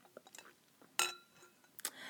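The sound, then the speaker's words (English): Glasses clink together in a toast, one bright ringing chime followed by a second quicker clink, with faint rustles and small handling noises around them and no voices. “So, you know, another cheers to her. And cheers to the girls who need to leave. Cheers, you guys.”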